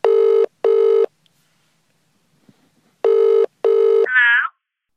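A phone line ringing out in the British double-burst pattern, two pairs of buzzy tones separated by a pause, ending with a brief warbling electronic chirp. No one speaks.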